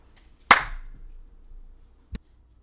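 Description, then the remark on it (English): A single sharp hand clap, made to signal a pause, rings out, followed by a brief hum and then a softer, duller knock a moment later, with no one speaking. “Can I clap for a pause?”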